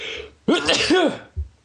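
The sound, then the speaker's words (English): One loud sneeze: a sudden voiced burst lasting under a second, followed by a brief soft thump, with faint background noise before it and no talking. “I'm going to sneeze.”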